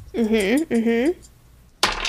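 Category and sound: household object, dice being rolled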